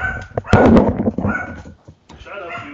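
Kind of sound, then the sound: animal, dogs barking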